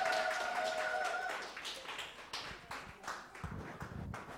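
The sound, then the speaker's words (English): An audience claps together in a steady, dense patter of applause, welcoming a woman who is coming up to sing. A faint sustained tone hums beneath the clapping at first, then fades. “Let's welcome her with a clap offering.”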